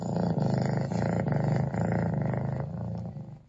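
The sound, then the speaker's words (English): A big cat's deep, rumbling roar-growl played by an Alexa smart speaker, loud and sustained for a few seconds with a pulsing, throaty texture before trailing off. No one speaks. “You know, it's a cat theme for November.”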